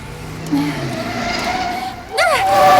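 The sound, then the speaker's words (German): Busy city street traffic rushes by as a girl rides her new mountain bike through town out to a boarding school, with a sharp tire screech and sweeping engine whines rising and falling over a steady rumble of vehicles. “fuhr sie mit ihrem neuen Mountainbike durch die Stadt hinaus zum Internat.”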